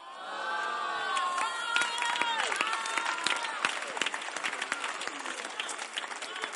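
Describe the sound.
A church audience claps steadily throughout, a dense patter of many hands, with cheering and raised voices rising over it early on before the clapping carries on alone.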